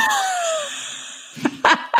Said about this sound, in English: Can you hear my cat scraping in his litter box right now? Yes. Is it pooping? Welcome to real life. No, he's not pooping. Well, nope. Yeah, he is.